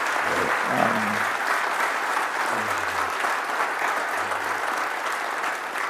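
A room full of people applauds steadily, a dense wash of clapping that holds at a constant level for the whole stretch, with a few faint low murmurs underneath.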